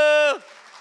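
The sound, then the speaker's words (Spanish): A held, shouted vowel breaks off into a steady wash of audience applause, many hands clapping together in a dense, even patter that fills the remaining half second. “A ver ese aplauso.”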